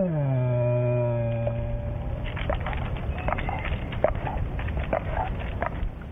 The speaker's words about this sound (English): Some people have described it as a growl. Because if a person is afraid of an animal, any sound they make will be interpreted as a growl. But it's just their moan of fear. The bear is sitting up in a tree in abject terror.